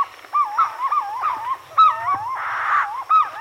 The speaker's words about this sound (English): In a nearby tree, purple-throated fruit crows add their voices to the sunrise chorus.